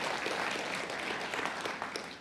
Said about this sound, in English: And of course, the staff here and the folks serving you drinks are the best in the business, so give them a round of applause as well, please.